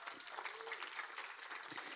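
A church audience applauds a woman's upcoming 70th birthday, many hands clapping in a dense, steady patter that holds at an even, fairly strong level throughout, with no distinct voices over it.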